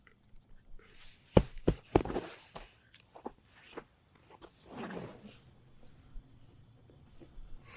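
A female dog named Blue shuffles and moves about, with sharp clicks and scuffs of paws or tags, a few quick bursts, then a softer muffled rustle or grumble before things settle quiet.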